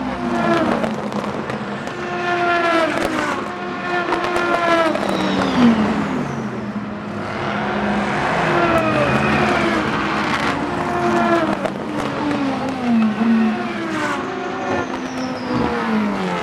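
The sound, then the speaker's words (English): Several race cars in a sports car series, purpose-built prototypes and GT cars racing together, roar past on a track, engines revving and shifting pitch as they sweep by one after another, loud and continuous with overlapping whines and doppler swells. “In most sports car series, these different types of cars race on track together at the same time.”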